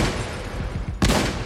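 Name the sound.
gunshot sound effects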